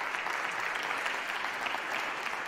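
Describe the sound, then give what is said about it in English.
An audience at Horizon West Church applauds steadily, celebrating five years as a campus, a dense wash of many hands clapping at an even level throughout, with no voices standing out. “Y'all, yeah, you can applaud that.”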